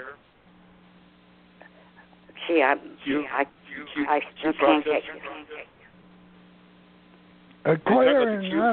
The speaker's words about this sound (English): is there any way you can get rid of the echo? The echo is part of Blog Talk.